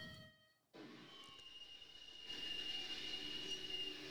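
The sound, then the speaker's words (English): A train rolls along railroad tracks with a steady rumble, joined midway by a loud, high-pitched metallic squeal from the wheels that holds to the end. “Oh, this is you're talking about here, the train? Mm-hmm. The tracks.”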